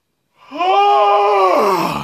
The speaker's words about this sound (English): It's a good yawn, man.